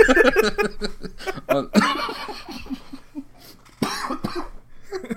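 Several harsh, close coughs burst out amid snickering laughter, with a couple of loud hacking fits standing out between quieter chuckles.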